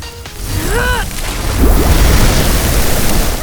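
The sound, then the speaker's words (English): A loud, steady hiss of water sprayed onto a burning hot oil spring rushes over a crackling fire, swelling into a deeper rumbling roar halfway through, with a few brief squeaky chirps near the start. “Something's wrong! The water isn't helping at all! Maybe if I spray harder...”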